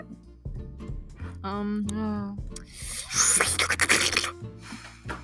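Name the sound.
voice imitating whale noises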